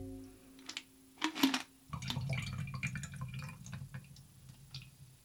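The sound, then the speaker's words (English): A few light clinks and drips, then water being emptied out pours steadily into a metal can for several seconds, moderately loud, with no talking. “Okay, so I'm going to get rid of some of this water. I'm just going to pour it into my can here.”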